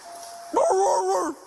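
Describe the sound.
A police officer imitates a barking dog, pretending to be a canine officer while searching for people in a creek, letting out a loud burst of harsh, tonal barks and growls that lasts about a second over a faint background hiss.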